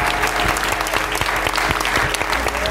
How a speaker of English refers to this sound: We just want to thank if we could get a quick round of applause for our panelists. Thank you so much.